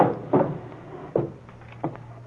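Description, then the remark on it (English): A drawer being opened: three short wooden knocks and scrapes spaced about a second apart, over a steady low hum with no voices. “In that drawer over there. Yeah, this one over here?”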